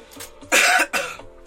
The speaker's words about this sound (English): Can I cough through you?